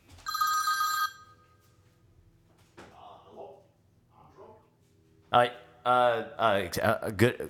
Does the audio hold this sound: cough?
no